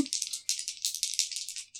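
Dice rattle rapidly in a cup or hand, a dense run of bright, clicking knocks that pulse unevenly for under two seconds before stopping, with no voices over them.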